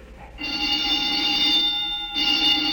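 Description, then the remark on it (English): A harsh, steady alarm buzzer rings continuously, a bright electric tone that dips briefly before resuming at full strength; no one speaks over it. “What's that? The old woman must have turned in an alarm.”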